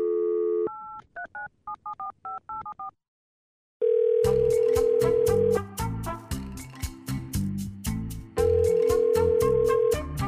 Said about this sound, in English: Let's make a phone call.